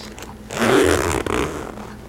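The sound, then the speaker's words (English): The zipper on the front pocket of a black leather bag is pulled in one steady, rasping stroke lasting over a second, fairly loud, with no talking over it. “So yeah, it's got a front zipper pocket.”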